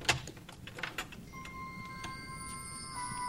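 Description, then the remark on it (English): A front door in a house entryway rattles and clicks open in a quick flurry of knocks, then wind chimes ring out as the door opens, with several bright, sustained tones that shimmer and linger, with no talking. “And then opens it up, and just the wind chime noise as the door opens up.”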